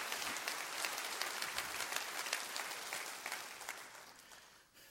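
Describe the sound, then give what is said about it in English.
An audience claps their hands together in a dense, sustained burst of applause, many overlapping claps forming a steady crackling roar that holds for several seconds before tapering off. “Clap your hands real big all over this house.”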